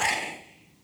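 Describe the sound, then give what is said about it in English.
A single airy breath, a soft hissing rush of air that starts strongest and fades away within a second, fairly quiet, with no talking. “And the reason why it is Yahweh is because when you say Yahweh, it's actually supposed to symbolize what it means and what it sounds like to breathe in and breathe out.”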